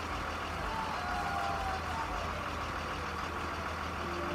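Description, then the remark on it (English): A large party bus's engine rumbles steadily, a low continuous drone with faint tonal whines drifting over it, as the bus pulls up outside a bar and idles for costumed partygoers, with no voices. “Until finally someone yelled, "The bus is here!"”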